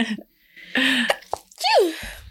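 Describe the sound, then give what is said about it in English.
A loud sneeze: a sharp breathy burst followed by a voiced, falling 'choo'-like tail, with a brief quiet pause before it and no talking. “Bless you.”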